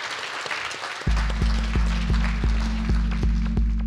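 An audience claps in a dense, crackling round of applause; about a second in, a low steady musical tone with regular pulsing beats starts and continues under the clapping.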